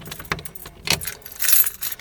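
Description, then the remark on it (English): Keys jangle in a few quick metallic bursts, bright and clinking, with a louder shake near the end and no one speaking, as a person takes out their keys to go in the door on arriving home. “Okay, so take out my keys.”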